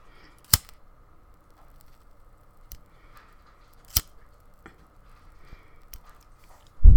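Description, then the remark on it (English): A lighter, used in place of matches, is flicked to light a mugwort smoke stick for a smoke cleanse: two sharp clicks and a few softer ticks over a faint steady hiss, ending in a sudden low rumbling burst. “I can't find my matches, so we're just going to use a lighter.”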